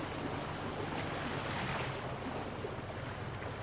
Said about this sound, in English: I have never seen ocean water bubble and swirl and twist about so much. It's like we're in a cauldron. This is the Old Sow. It's a spot off Deer Island, New Brunswick, that's crazy with whirlpools.